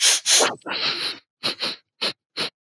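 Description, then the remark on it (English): A person imitates Joe Biden's sniffing: a couple of quick nasal snuffles and a longer drawn-in sniff, then four short, sharp sniffs spaced out, with no talking. “I did say sniff, not snort.”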